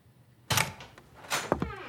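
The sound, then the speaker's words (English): A door latch clicks sharply and the door swings open, followed by a couple of quieter knocks and clicks of footsteps on hardwood flooring, with no voices. “I hear the door open and hear his footsteps on the hard wood flooring.”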